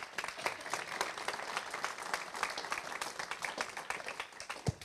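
An audience applauds steadily for about five seconds, a dense, crackling mass of many hands clapping at once with no voices standing out, holding at an even level throughout.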